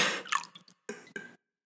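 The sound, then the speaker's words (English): Several quiet, wet dripping and splattering sounds of condensation dripping onto a person, arriving in short irregular bursts with brief pauses between them and no voices. “Ooh, the condensation is dripping on me.”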